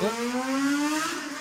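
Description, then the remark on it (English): A motorcycle engine drones steadily from a main street about 30 feet below, its buzzy harmonic tone rising gradually in pitch as it accelerates past, fairly loud and continuous with no voices. “Anyway, we usually have sirens. Now we have a motorcycle.”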